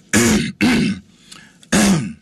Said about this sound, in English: Let me clear my throat on this